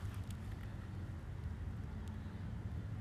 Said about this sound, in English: Off to my right is bunch of boats that are moored that residents park, come back for. Somebody's moving their pontoon boat out today, I see. And it's just quiet so far.